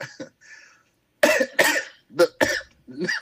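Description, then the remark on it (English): A loud coughing fit: a few hacking coughs in quick succession, preceded by softer throaty rasps, with no talking. “That nigga can't even tell that lie without coughing.”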